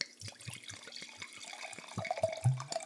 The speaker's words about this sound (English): I'll do the pour. She's doing it.